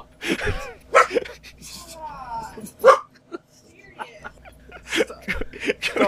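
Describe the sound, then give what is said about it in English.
A dog lets out a few sharp barks mixed with high, wavering whimpers and whines, fairly loud, in short bursts across several seconds with some background voices. “Sorry, dog. That backfired really bad.”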